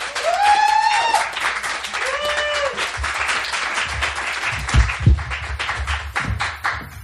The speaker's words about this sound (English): Let's get a big round of applause going for